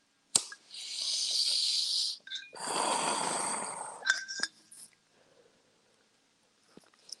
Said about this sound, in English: Taking a toke with my folk for my folk. Cheers, amigos.